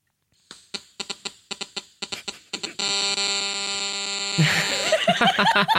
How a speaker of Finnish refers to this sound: Eikö tämä ollut se, kun puhelin alkaa soimaan radion vieressä? Niin, tai sä kuuntelet vaikka tietokoneen kaiuttimista jotain musaa, ja sitten sä saat vaikka tekstiviestin.